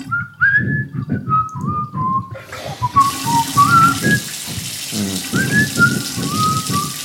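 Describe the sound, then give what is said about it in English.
A person whistles a wandering, made-up melody, short rising and falling notes in a loose rhythm, over a steady hiss like rain that grows louder partway through. “What's one of your favorite songs to whistle to?”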